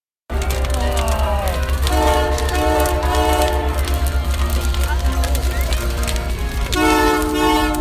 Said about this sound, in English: It's the 2019 CP Rail holiday train visit in Loretto. You hear the train in the background, and the folks are excited. The train is just pulling in here at the location, and it's right downtown Loretto, and they've got the fires going here.